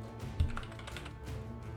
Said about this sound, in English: Furious typing.